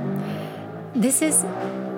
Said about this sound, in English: This is a new setting, as you can hear. I am located just by the highway to the airport. And there are no proper windows. It's just like a mosquito net.